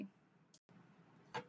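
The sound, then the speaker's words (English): Two quick, raspy pulls of a sweatshirt zipper being fiddled with, about a second apart, fairly quiet against a low background hum. “Once you hear this sound in the background, that's me fiddling with my sweatshirt zipper.”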